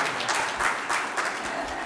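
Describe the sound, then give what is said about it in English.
A crowd breaks into steady applause after a reading from the Bible, many hands clapping at once in a dense, even wash of sound that holds at a fairly consistent level throughout. “Deserves a round of applause for the amazing thing.”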